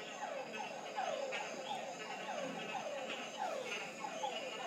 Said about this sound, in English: These frogs gather in choruses that are sometimes referred to as leks. Males come to these places at night.